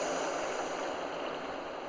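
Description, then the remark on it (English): A steady, hissing wash of ocean surf rolling onto an empty beach on an early fall morning, continuous and moderately loud with no distinct single crash, gently easing off toward the end. No voices. “You hear the waves, feel the breeze ever so gently off of the ocean.”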